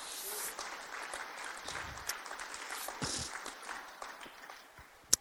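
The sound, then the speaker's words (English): Congregation applause: a dense, steady wash of many hands clapping at once, fairly quiet and even throughout, with a few sharper individual claps standing out, including one crisp clap right at the end. “Come on, cheer.”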